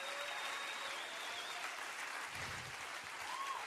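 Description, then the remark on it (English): An audience claps and cheers in praise of God during a sermon, a dense, steady wash of applause lasting the whole moment, with scattered shouts rising above the crowd noise. “Would you clap your hands and give God a cry?”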